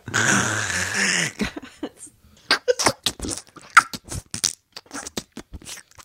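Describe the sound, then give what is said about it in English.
A voice imitates the gloopy scoop of a dead bird: a drawn-out, rough squelching gurgle, then a run of short, irregular wet clicks and smacking pops. “If you're going to scoop a dead bird a with a manual, the sound is probably going to be more like.”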